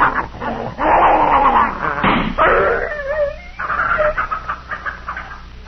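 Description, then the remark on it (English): A poisoned dog named Tiger yelps and wails in pain, with sharp cries breaking into drawn-out, wavering howls and whimpers that rise and fall over several seconds, loud and agitated. “I'm sorry, Mrs. Godfrey, but he was in such pain he'd have bitten both of us.”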